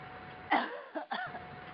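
A short cough followed by two quicker, rougher coughs, muffled and fairly faint as if over a phone line, with no talking around them.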